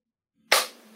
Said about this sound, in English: Would you mind giving us one solid clap?